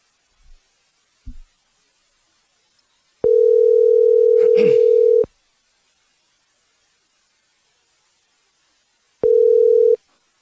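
A telephone dial tone while placing a call to a guest: a steady electronic hum that sounds for about two seconds, pauses, then starts again. A couple of soft clicks come before it, and no one speaks.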